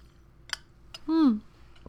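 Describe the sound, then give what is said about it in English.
Two quick, faint wet clicks of sipping and swallowing a drink, then a short voiced 'ahh' with falling pitch. “Let me take a drink. Take a sip, Jesus Christ.”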